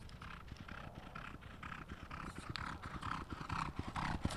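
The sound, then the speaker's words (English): Several horses ridden by exercise riders gallop around a private training track with welded pipe fencing, a rapid, steady drumming of hoofbeats that swells slightly as they draw nearer, over a low rumbling background; no one speaks. “He trains riders to exercise the horses.”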